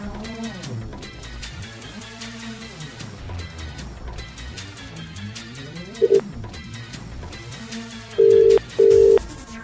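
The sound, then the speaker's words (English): An outgoing call rings: a short electronic blip, then a pair of steady buzzing ring tones near the end, loud and clear over a busy music bed. “If you see a withheld number come up, answer your phone.”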